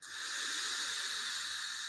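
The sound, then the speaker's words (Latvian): A steady, airy hiss of air being drawn through a vape, starting abruptly and holding an even, breathy whoosh for about two seconds with no talking. “Tieši gaisa vilknes ziņā, es nekādu atšķirību nejūtu, vai uz puses, vai uz pilnu.”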